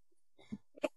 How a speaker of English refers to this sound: As per usual, when I say sip, I mean gulp. And you know what? I spent so much time procrastinating on starting off this recording that there's basically only one gulp left. So might as well take one more gulp.